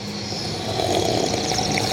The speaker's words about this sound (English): Should we all take a sip of coffee on the count of three, right into the mics?